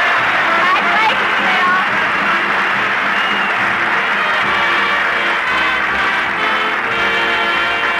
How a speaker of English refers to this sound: Applaud loud. The baby's listening in.